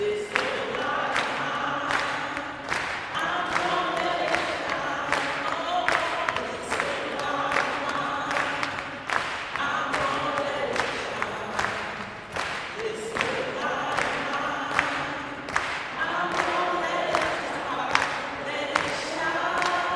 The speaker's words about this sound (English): And at one point during the memorial, the crowd that filled the church broke out in song.